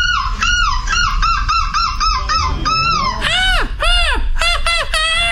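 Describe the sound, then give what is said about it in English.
A person imitates a screeching seagull with a rapid run of harsh, nasal squawks, then a few longer drawn-out cries near the end, loud with no talk. “You sound like a crow or a magpie.”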